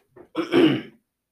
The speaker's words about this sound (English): Again, sorry about the coughing.